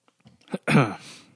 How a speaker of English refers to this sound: has now taken a swig of water. That was a big gulp. That was my big gulp.